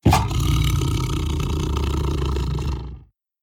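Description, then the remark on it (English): A voice imitates a tiger's roar: one loud, gravelly, rumbling growl held for about three seconds before stopping abruptly into silence. “And she wants to hear a tiger. Not a jaguar, not a leopard, not a cheetah. Has to be a tiger.”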